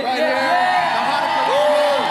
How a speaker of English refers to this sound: So I'm gonna audience participation, whichever Christmas team you like the most. I want to hear your loudest cheer.